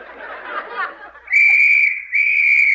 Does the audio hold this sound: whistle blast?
yes